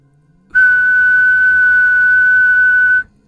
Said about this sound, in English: As I put my daughter to bed, I heard something far off in the distance. It whistled one long, sustained note. It was the E note on a piano, sustained almost like a whole note in a piece of music.